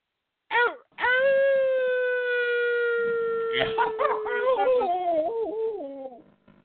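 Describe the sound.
A person gives a short yelp, then a long, loud, steady howl held for several seconds before breaking into wavering, mournful rises and falls, like a wounded wolf, alone.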